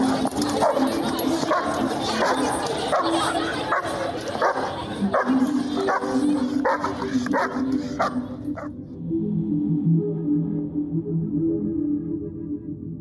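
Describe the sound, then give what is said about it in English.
A dog barks in repeated, agitated bursts over a busy, noisy background, then the barking stops and a lower, steady hum carries on for the last few seconds. “The witness's dog became agitated, so he turned around, continuing to hear the commotion as they made their way back up the street.”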